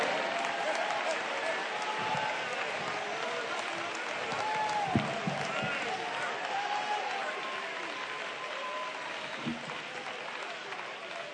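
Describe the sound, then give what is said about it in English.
A large group claps hands steadily and loudly for several seconds during a sermon, clapping in praise, a dense, continuous patter with scattered voices calling out beneath it. “We ought to clap our hands.”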